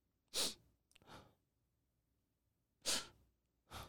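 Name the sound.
imitated heavy breathing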